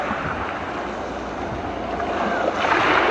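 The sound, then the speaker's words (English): Steady wash of water lapping and splashing at a dock on a mountainside lake, with a breezy rush of wind on the microphone that swells slightly louder toward the end; no voices. “We're having fun at the mountainside lake.”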